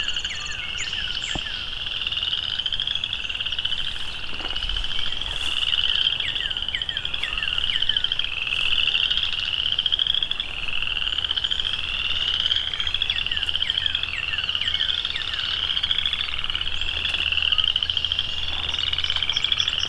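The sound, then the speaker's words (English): A dense chorus of chorus frogs calls continuously, their rapid trilling croaks overlapping in pulsing waves for the whole stretch, loud, with the faint song of a song sparrow almost buried beneath them. “A song sparrow right in front of me, and you can barely hear him because of all of this chorus frog song.”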